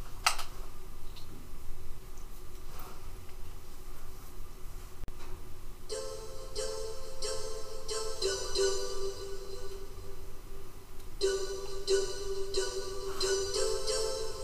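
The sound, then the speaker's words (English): The PlayStation 1 startup sound: a quiet, hissy opening, then a bright shimmering synth swell with sustained tones, a second bright swell and a ringing chime near the end. No one speaks. “That is the PlayStation 1 sound.”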